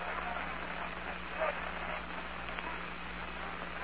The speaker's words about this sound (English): The crowd is humming.